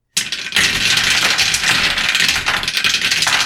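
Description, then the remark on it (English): Dice clatter and rattle continuously across a table for about three seconds, a dense, bright tumbling with no voices. “I got 2 successes, and the computer dice came up as a 1.”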